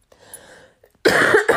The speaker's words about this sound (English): Excuse me. I'm so sorry for this cough. I'm going to drink something. Hold on.